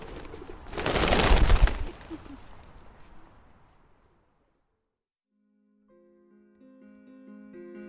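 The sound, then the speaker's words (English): A loud burst of pigeons, lining a wall, in nearby trees and on the ground, cooing and stirring, that fades away over a few seconds, leaving a brief silence before soft music begins. “Behind me, lining the wall and in every nearby tree and even on the ground surrounding me, were the pigeons.”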